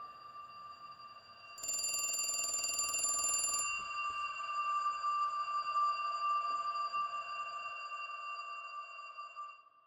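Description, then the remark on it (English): A single buzzing electronic ring lasting about two seconds, set against a steady high-pitched tone that hums on throughout. No one speaks. “So I stayed in bed, and I didn't do anything about the phone ringing.”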